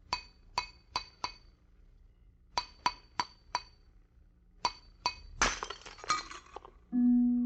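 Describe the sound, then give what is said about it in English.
Sharp clinks tap a glass vessel in quick groups of four, then it shatters loudly with a burst of tinkling fragments, followed by a low, sustained musical tone. The glass was a closed vessel shaped to the exact contour of a man's head, which it held. “The glass you just heard broken was not ordinary glass.”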